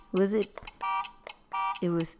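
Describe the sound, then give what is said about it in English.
A voice imitates a game show buzzer, making four short, harsh, nasal blasts in quick alternation, fairly loud, with brief gaps between them. “Because I did this, right? The buzzer.”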